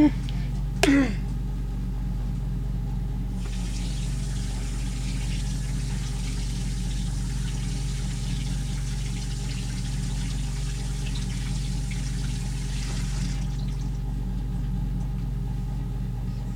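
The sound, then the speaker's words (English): Water pours steadily over a frozen container to thaw its outside, for about ten seconds, a continuous hissing splash that starts and stops cleanly, with a low mechanical hum running underneath throughout. “But what I'm going to do is I'm just going to hit it with a little bit of water, let it thaw on the outside, and we prick it out, and then we're going to bring it in with our strudel.”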